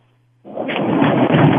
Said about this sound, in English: did you just flush? What was that?